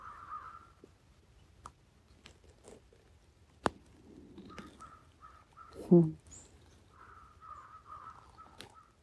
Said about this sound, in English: Of course, we have our crows in constant communication, not so invisible.